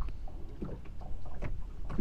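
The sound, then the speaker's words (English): A small boat out on a fishing trip rocks on the water, with a steady low rumble, soft splashes and knocks against the hull at irregular moments, fairly quiet, with no one talking. “What we're gonna do now, though, is take a little selfie. Okay. On the boat with the boys, with our mics in.”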